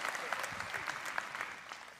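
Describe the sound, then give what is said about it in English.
An audience claps steadily, a dense patter of many hands at a moderate level, with no clear rhythm and faint voices mixed in beneath it. “Yeah, you can clap.”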